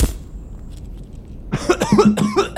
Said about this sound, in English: Yeah, you gotta cough to get off. That's what my father always said.